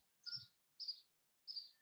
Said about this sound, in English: I hear birds chirping.